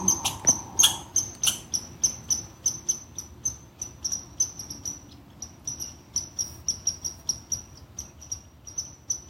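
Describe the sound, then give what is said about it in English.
A squirrel's alarm call: sharp, high-pitched chirps repeated in a steady rhythm, roughly three to four per second, continuing without pause for the whole stretch, with no one talking. “Perhaps the squirrel isn't even alarm calling at me.”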